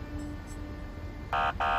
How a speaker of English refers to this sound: The sound of a police siren cut through her last horror.